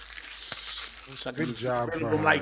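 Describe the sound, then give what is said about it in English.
Crackly crinkling of paper being crushed, with a sharp snap near the start, followed by a man talking as the rustling fades under his voice. “I wish I could get rid of him like this piece of paper. Ah, throw him in the garbage.”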